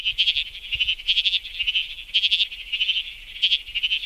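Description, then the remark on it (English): A bleating froglet, a tiny frog from the Perth region, calls repeatedly, its high, buzzy trills wavering like a sheep's bleat, coming in steady bursts that overlap with no voices present. “It's the bleating froglet. This is a tiny little frog, and it calls and sounds a lot like a sheep.”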